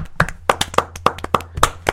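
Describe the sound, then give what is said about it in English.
A brief round of applause: about eight sharp, evenly spaced hand claps in a quick steady rhythm, like one or two people clapping, over a faint low hum. No one speaks. “Let's get round of applause.”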